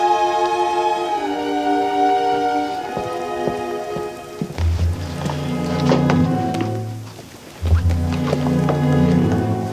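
Steady rain patters outside a hotel throughout, a constant wash of falling water heard beneath sustained musical tones that swell and deepen partway through, with a low rumbling drone joining in.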